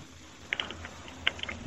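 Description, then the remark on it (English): A fax printer mechanism runs quietly, with a low whirring hum and two short bursts of clicking and ratcheting, and no voices. “It's on my printer. Oh. You got one of those fancy fax machines.”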